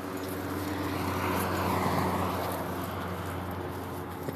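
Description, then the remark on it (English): An airplane drones overhead, a steady broad roar with a low hum that swells slightly in the middle before easing off, with no voices. “That's another plane.”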